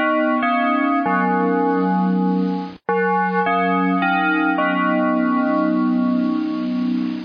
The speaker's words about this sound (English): Alrighty, we're back. Just 2 seconds of a bell ring, and just like that, we're back. Ding. And ding, ding.